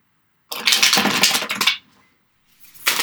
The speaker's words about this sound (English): I always shuffle the cards 3 times. I'm not 100% sure where that comes from.